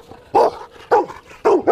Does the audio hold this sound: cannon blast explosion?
no